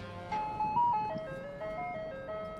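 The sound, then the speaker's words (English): A tinkling ice cream truck jingle plays a simple melody of sustained electronic notes over a low engine rumble, fairly loud and steady throughout, as the truck crawls slowly through a neighborhood on a sweltering afternoon. “Sure as flies to a pile of manure, the siren song of the ice cream truck began to draw children from their homes.”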